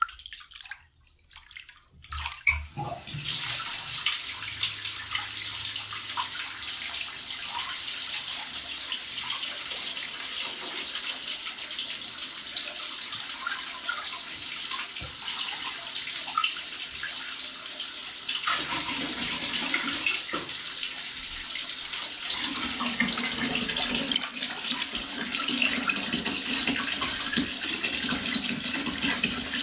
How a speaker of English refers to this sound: I could probably use some more water in this tub. Yeah, fuck it. That's what I'll do.